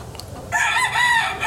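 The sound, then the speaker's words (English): Chickens cluck in a loud, drawn-out burst of calls that starts after a brief quiet moment and carries through to the end, with no voices present. “To where the chickens were.”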